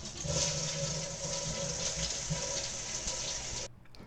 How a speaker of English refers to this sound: And so we'll wrap up our bathroom reading there. Sitting on a toilet, now flush.